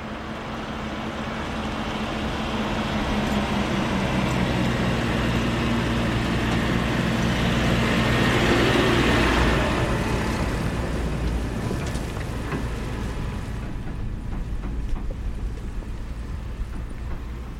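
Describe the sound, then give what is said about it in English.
A tractor engine drones steadily with low rumbling tones, swelling louder toward the middle as it passes, then easing off while still chugging in the background. No one speaks. “And that's the sound of a tractor.”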